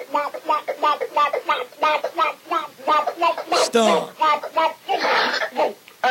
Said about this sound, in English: Speaking of a bird, I got a clip of a duck. A bird.